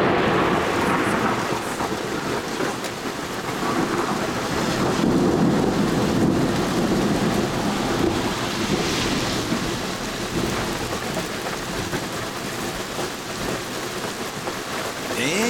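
Heavy rain pours steadily in a dense, hissing wash during a January thunderstorm in New York City, while deep rumbles of thunder roll underneath, swelling and fading through a continuous storm with no one speaking.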